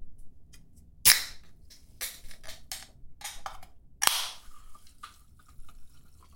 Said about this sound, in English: That is the opening of a PBR can and then being poured into a plastic cup. That's what I think that is. You know what? You're very, very close. It was actually a soda can